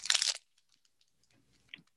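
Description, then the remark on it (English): A loud crunch as a Nutri-Valley sweet and salty nut granola bar is opened, crisp and brittle, then a pause with faint clicks before softer crackling and one more sharp little crunch. “So I'm going to give you a little ASMR and open it up.”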